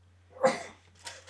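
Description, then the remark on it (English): A single loud sneeze that knocks the sneezer's headphones off: a sharp, breathy burst followed by a quieter hissing exhale, with a low steady hum in the background and no talking. “Bless you, the headphones came right off.”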